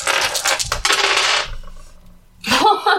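Green dice clatter and rattle across a hard surface for over a second, loud, then a brief pause before a second shorter burst of tumbling clicks.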